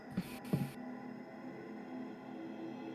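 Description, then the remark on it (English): Two dull, hollow knocks of a fist on a wooden door land close together near the start, then give way to a faint, steady low hum with no echo. “As you repeatedly knock on this door, you hear the impact of your fist against wood.”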